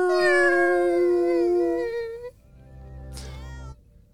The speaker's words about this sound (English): She's a cat.